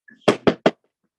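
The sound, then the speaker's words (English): Three hollow knocks of knuckles rapping on wood, evenly spaced in quick succession, each sharp and fairly loud with a brief resonant decay, with no talking over them. “Knock on wood”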